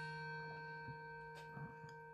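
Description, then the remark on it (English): A clock winding up before it chimes: a steady, faint mechanical hum with a few soft clicks and ticks scattered through it, quiet, with no voices. “Oh dear, my clock's going to go off.”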